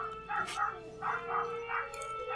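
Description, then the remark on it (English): A tiny dachshund in California yaps in a string of about five short, high-pitched barks, steady, with faint background noise and no one talking. “There's a tiny dachshund.”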